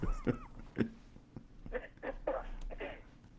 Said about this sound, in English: So I got somebody on the conference call that's clearing her throat, which means that she probably wants to speak, but she's not on Facebook Live, so I don't.